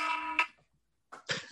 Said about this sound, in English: No, it was an alarm. It was an alarm because I have a trainer, and I was supposed to send him a tracking, like a meal tracking sheets.